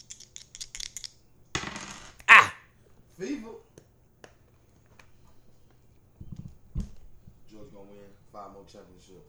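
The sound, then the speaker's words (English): Dice are rolled, rattling and clattering onto a hard surface in a quick burst of sharp, loud clicks, followed by a lull and then some muffled voices in the background. “All right, where them dice at? Roll them.”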